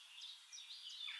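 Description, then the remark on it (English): Soft birdsong: high-pitched chirps and twittering overlap continuously at a low, steady volume, with no voices present. “See the sun shining brightly on a clear blue sky and hear the birds singing.”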